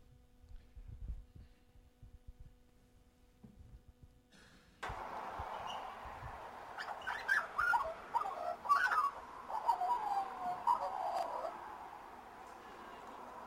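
An Australian magpie carols in a run of liquid, warbling whistles over a steady background hiss, following a few seconds of soft low thumps at the start.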